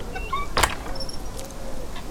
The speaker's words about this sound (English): Phoebe understood Abby's intention and took out her keys. Oh, if Gilligan remembered to leave the bolts open! The key turned with a click. Phoebe opened the door.